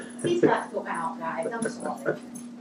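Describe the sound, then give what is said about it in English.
A dog barks and yips in a rapid string of short, whiny bursts, with a steady low electrical hum running underneath. “There's a dog.”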